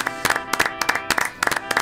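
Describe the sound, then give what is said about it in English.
A short burst of applause from a small group, with sharp, uneven claps piling up in quick clusters over a faint, steady tonal hum. No voices are heard. “Round of applause, please, here.”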